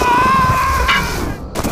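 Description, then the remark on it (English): Loud, dense gunfire roars without a break, a high ringing tone running through it and a couple of sharper cracks standing out near the end. No voices are heard. “We're being shot at!”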